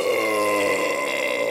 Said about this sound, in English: The Baron belches and looks up.